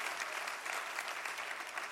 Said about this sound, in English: Would you give him a great hand clap right now, even on this Wednesday night? What a joy.